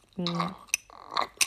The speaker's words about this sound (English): I'm gonna take a sip of my melting ice cubes.